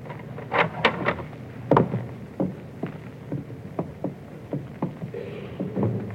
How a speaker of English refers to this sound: Quietly now. Open the door.